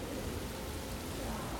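Heavy special-effects rain pours down over a vast film set in a steady, dense hiss with no breaks, a continuous wash of sound filling the whole moment at a moderate, even level.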